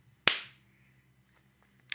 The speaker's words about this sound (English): Forward, then we'll do the countdown and the clap. 3, 2, 1.